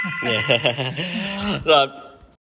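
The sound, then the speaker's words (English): A telephone rings with a steady, trilling tone lasting a couple of seconds, partly mixed with voices talking over it. “We had a couple of phone calls from family today.”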